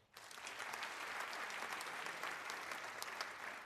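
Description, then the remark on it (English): A steady burst of audience applause at an event recorded for television and radio broadcast, many hands clapping in a dense, crackling wash that starts abruptly and holds at an even loudness without voices. “And I appreciate the applause.”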